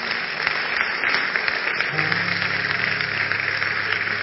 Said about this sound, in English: Clap for Jesus.